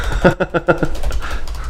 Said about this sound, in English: Yeah, that's me typing ferociously.